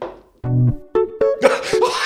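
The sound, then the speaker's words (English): Chiptune-style music from the video game Mario Paint: a short run of bright, buzzy synthesized notes, about five in a bouncy sequence, with no talking over it. “Is that the fucking Mario Paint music?”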